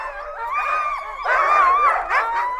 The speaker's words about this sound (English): The dogs get so excited before their runs. They're hooked up to the guy line, leaping in the air, banging on their harness. It's like this chaotic symphony rising up to a crescendo.